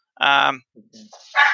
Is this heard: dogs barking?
yes